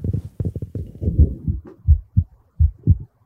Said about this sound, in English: Hey, can you hear my heart?